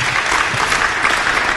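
An audience claps steadily, a dense, even wash of many hands with no voices standing out, sustained at a loud level through the whole moment.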